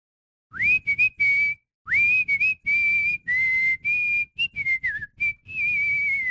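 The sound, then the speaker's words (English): A person whistles a clear melody in several short phrases, each opening with a quick upward slide and then holding wavering notes, with brief pauses between phrases and no talking. “I'm my whistling tactics”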